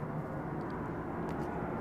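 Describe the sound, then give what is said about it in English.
An airplane drones overhead, a steady, broad engine roar that holds evenly at moderate loudness throughout, with no voices. “Now, on to, we'll start with golf as the plane flies overhead.”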